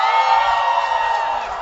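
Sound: audience shouting and cheering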